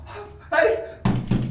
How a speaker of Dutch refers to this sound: Ik bonk en bonk op de zware deur, maar niks helpt.